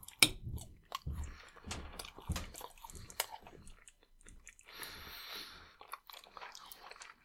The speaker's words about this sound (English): Yeah, they definitely are more of a solid chew than I was hoping for.